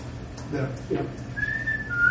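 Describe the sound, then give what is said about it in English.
A black-capped chickadee's clear two-note whistled song, a long pure high note followed by a slightly lower one, comes after a brief murmur of voice against a low background rumble. “That's one of the first bird songs you will hear. Usually in late mid-January. And that is chickadee song.”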